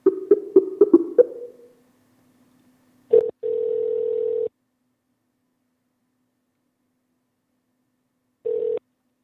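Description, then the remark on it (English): A quick burst of telephone dialing tones as a call is placed, then a long steady ringback tone sounds over the line and repeats after a pause. The tones are clear, with no voices. “I'm going to fumble my way over right now and see if I can get Larry Moores on the phone here”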